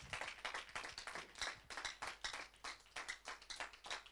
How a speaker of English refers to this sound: to be here this morning, happy to be alive, then I think you should jump up and clap your hands for Jesus, not for me.